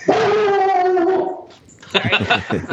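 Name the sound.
dog barking and whining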